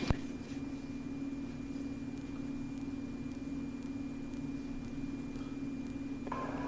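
A steady, droning engine hum of a vehicle driving in a car chase, continuous and fairly even over a rumbling background, with no voices and a brief higher tone creeping in at the very end.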